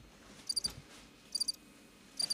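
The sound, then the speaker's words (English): Three short bursts of cricket chirping, each a quick trill of high, thin pulses, evenly spaced about a second apart against a quiet background with no talking. “Cricket.”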